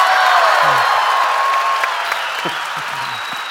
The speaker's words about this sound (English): Keep it in. Keep it in. But do a round of applause, and we're back.